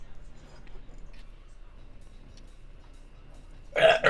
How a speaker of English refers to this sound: That was me burping.